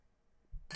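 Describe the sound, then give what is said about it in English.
A dull knock followed by a bright, ringing clink of glasses of Imperial Double IPA beer bumping together in a toast, fairly loud, heard once with no talking. “I literally knocked Tim's glass.”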